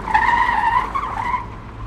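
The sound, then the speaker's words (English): The tires of an old, long and boxy Buick screech loudly for about two seconds, a sustained high-pitched squeal that wavers slightly in pitch before easing off as the car skids to a stop, with engine rumble underneath. “Then it screeches to a stop and backs up.”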